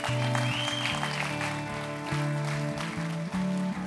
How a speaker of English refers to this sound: Come on, we can give them a clap. A couple hands.